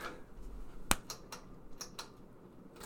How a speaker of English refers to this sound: I'm just trying to turn this fan down. It's hot in here.